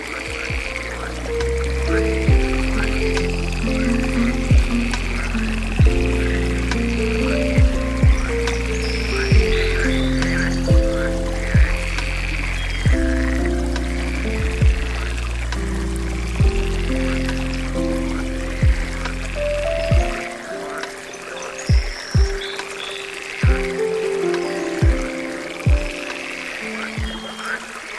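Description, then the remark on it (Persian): Pond ambience with water gently trickling and repeated frog croaks pulsing in a steady rhythm, along with soft low-pitched knocks and occasional birdlike chirps, all moderately loud with no voices. “یک کوچولو دیگه که قدم بزنیم رسیدیم به برکه.”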